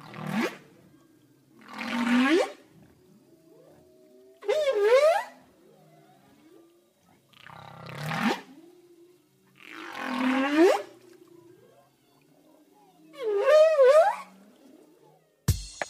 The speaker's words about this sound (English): It is an animal that lives in the ocean, though. Any idea what it is? Who's talking? I'll tell you. That is the sound of a whale. Whales make that sound.